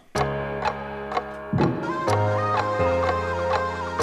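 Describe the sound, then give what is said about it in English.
A steady clock-like ticking clicks roughly twice a second over sustained, shifting synth or bass chords in a song's opening, with no voices. “I love clock songs.”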